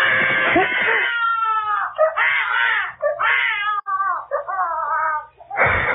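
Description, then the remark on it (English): A cat yowls loudly in a dark apartment-building hallway, in a string of long, wavering, drawn-out wails that rise and fall with brief breaks between them, with no talking. “That's the most frightened I ever was in my life when a kid started to yell.”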